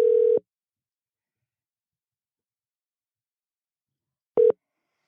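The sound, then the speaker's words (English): A telephone ringback tone while dialing out: one steady electronic beep, then about four seconds of silence before a second short beep. Clear and moderately loud, with no voices. “But I'll call him up.”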